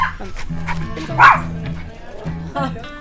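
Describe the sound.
A dog barks sharply near the middle, with other yips and whimpers scattered around it, while people talk over the noise of a group of 24 dogs, including Jack Russells.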